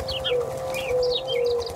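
Pigeons coo and warble continuously over a steady droning hum, with short chirpy calls darting above, moderately loud, with no talking.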